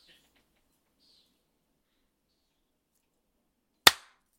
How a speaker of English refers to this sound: Okay, we need to clap though. How about at the 50-second mark? Okay.